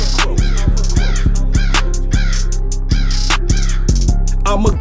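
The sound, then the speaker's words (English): A voice imitates a crow, giving a rapid, steady series of loud, harsh caws, about a dozen in under five seconds with no pauses between them. “I'm a crow.”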